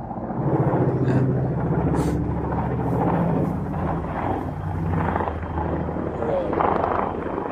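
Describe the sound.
Helicopters shuttling embassy personnel to and from the airport thump and drone steadily overhead, a loud continuous low rotor rumble filling the whole stretch, with muffled voices talking underneath.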